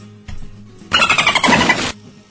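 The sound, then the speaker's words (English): A dolphin squeal sound effect: one loud burst of rapid, high-pitched chattering squeals lasting about a second, with only a faint low hum before and after it and no voices. “In case you don't know, whenever you hear the dolphin, you're supposed to drink a bottle of rum, or at least some amount of rum, maybe not quite a full bottle.”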